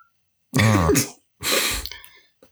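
sneeze

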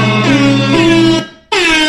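air horn sound effect

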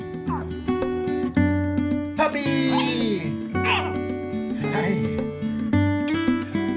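puppy barking and whimpering

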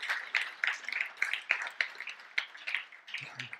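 round of applause

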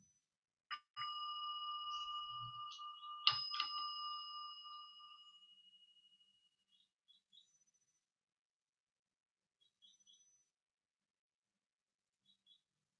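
meditation bell being rung

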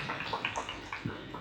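audience applause

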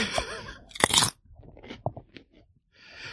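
crunching a chip

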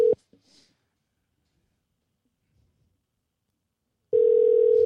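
phone call ringing out

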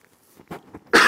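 coughing

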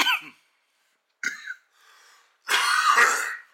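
coughing

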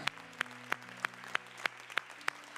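audience applauding

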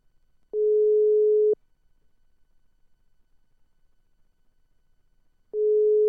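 phone call ringing tone

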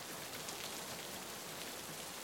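rain falling

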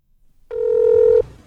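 telephone call being dialed

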